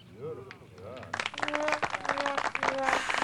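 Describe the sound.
A couple of short vocal whoops, then a loud burst of crowd cheering and clapping erupts and keeps going, dense and roaring, with shouting voices riding on top until the end. It is a crowd cheering sound effect played after a joke.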